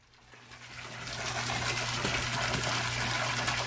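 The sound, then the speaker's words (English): Steady rushing water flows continuously in a giant koi fish pond with a bridge, built in a house's driveway, swelling over the first second and then holding level, with a low mechanical hum like a pond pump underneath. No one speaks. “In the driveway that he's turned into a giant koi fish pond with a bridge, his own space needle, it's a whole thing.”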